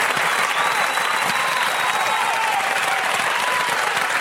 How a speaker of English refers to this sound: That's not just a golf clap. That's a big round of applause